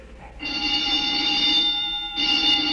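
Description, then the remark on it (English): A loud electronic alarm rings steadily with a shrill, sustained high-pitched tone, dipping briefly before sounding again, with no voices over it. “The old woman must have turned in an alarm.”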